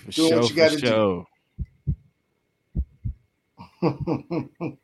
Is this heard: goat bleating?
no